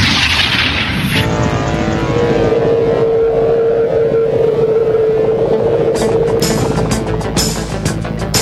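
A helicopter flies high above the city with a loud, steady engine roar over rapid rhythmic rotor thumping, and a high turbine whine holds through the middle. No one speaks.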